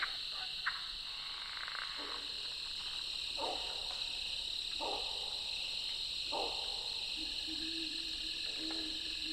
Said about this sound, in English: I think the mystery croaker is a crawfish frog, a Midwestern species that hangs out in the abandoned burrows of crawfish.